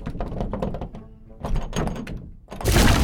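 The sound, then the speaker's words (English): A stuck, slippery, oiled-up door is yanked at with a series of heavy, uneven thunks and rattles, a brief lull, more straining knocks, then a loud burst of noise as it finally gives way. “is currently attempting to pull open a very slippified dandelion oiled up door to rescue our friends, and it doesn't seem to be working.”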